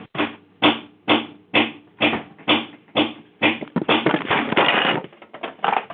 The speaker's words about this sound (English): I'm knocking everything over.